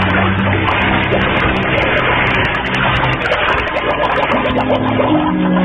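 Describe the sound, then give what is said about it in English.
A loud, continuous rush of churning water as a diver wearing a scuba rig (air tank, mask and flippers) goes over the side of a boat into the water at the edge of a coral outcropping, with dense bubbling and sloshing that fills the whole stretch without any voices. “And then I went on over the side.”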